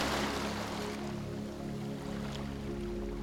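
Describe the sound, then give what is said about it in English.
Ocean waves wash steadily onto a shore in a continuous, soft rushing roar, with a faint low hum underneath and no voices. “As you walk, become aware of the calming sound of the waves caressing the shore, like a comforting lullaby.”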